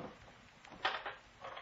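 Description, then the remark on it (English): A quiet drawer scrape as the bottom drawer of a desk is opened, followed by a short metallic rattle of boat keys being picked up, then a softer shuffle; no one speaks. “The keys are in the bottom drawer of the desk.”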